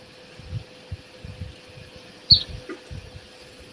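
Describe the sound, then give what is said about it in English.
A house wren outside the window, across the room, gives a single short, high chirp over a quiet background of low, irregular thumps and a steady faint hum. “We have house wrens outside the window.”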